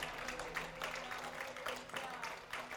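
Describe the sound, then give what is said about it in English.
A church audience at New Life Church claps together in a dense, continuous burst of applause, a clap offering to the Lord, that holds steady for about three seconds, with a faint low hum and murmuring voices underneath. “Would you give the Lord a big clap offering?”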